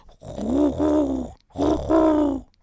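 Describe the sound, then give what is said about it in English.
A person imitates a dying pigeon with two drawn-out, throaty cooing groans, each dipping and rising in pitch with a brief pause between them. Loud and without other talk. “I can also do a sort of dying pigeon.”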